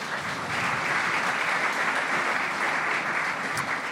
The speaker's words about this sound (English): So just before we start, a round of applause for all of our speakers today.